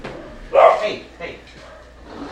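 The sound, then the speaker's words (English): A dog lets out a single sharp, fairly loud bark, followed by a softer, shorter bark a moment later, then quiet background noise. “The dog break.”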